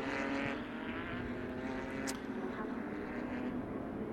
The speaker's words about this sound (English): Flat sixes out on the circuit for this session.